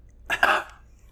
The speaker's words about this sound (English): I'm kind of over the cough. No, I like it.